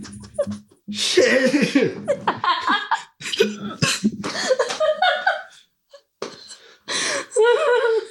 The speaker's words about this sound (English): It's hot in this room. I'm coughing.